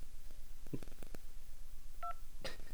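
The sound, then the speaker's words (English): A single short telephone keypad tone, a steady two-pitched beep, pressed to end a name recording on the Quest Chat phone line, sounds after a few soft clicks and taps, with another brief noisy burst at the end. No one speaks. “To end your recording, press any key.”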